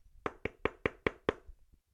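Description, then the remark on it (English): Six sharp knocks rap on a door in a quick, even rhythm, loud, with no one speaking. “Knocking in your town to take your shit”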